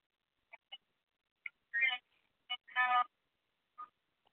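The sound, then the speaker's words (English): Electronic audio feedback from a phone line: short, warbling chirps and squeals in irregular bursts, two longer buzzy screeches in the middle, with near silence between them and no talking. “Yeah, I'm getting that back feed from the phone, is what I'm hearing.”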